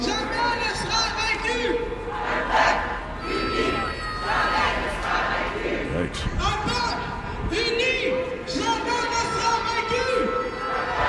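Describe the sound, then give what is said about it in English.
A crowd of voices at an anti-racism rally in Montreal chants and shouts continuously, blaring loudly through the loudspeaker of a passing truck with a dense, amplified, slightly distorted sound that never lets up across the whole stretch. “So I come up, I hear it, I walk up, and a truck going by playing this on this speaker.”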